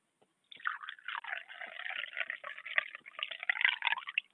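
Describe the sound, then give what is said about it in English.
Tea pours steadily into a cup for about four seconds, a bubbling trickle with a gurgling, uneven texture and no voices. “I'll just pour a little bit of tea because we need that for this program.”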